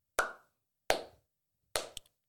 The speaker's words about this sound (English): Please drop what you're doing. Give yourself a round of applause. Just clap, just even if you're in a sort of a busy place, just little tiny claps. Just do it for me.